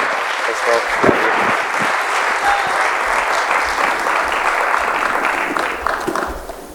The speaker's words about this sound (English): He's a good man, anointed and called. Let's give an applause as he comes up.